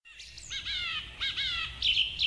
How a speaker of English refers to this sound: Chirp, chirp, chirp, chirp, chirp. Flamingo sound.